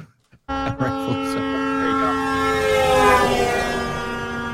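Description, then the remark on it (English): A loud, sustained horn sound effect kicks in after a brief pause and holds steady for about four seconds, rich with buzzing harmonics and a growing noisy edge toward the end. “You don't need to play the music. Just hit the horn.”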